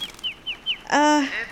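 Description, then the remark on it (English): A bird loose inside a house sounds off: four quick, high chirps in a steady rhythm, then one loud, harsh, drawn-out squawk. No one speaks. “It sounds like the bird is in the house now, yeah?”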